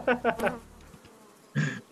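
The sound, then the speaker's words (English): A voice imitates a mosquito's buzzing: three quick, fairly loud buzzy bursts, a short pause, then one longer buzz near the end. “So, I don't know what to do about these freaking mosquitoes, dude.”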